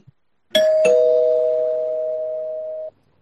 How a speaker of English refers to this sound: So, some things go awry, but I'm going to hit the spoiler bell at this point.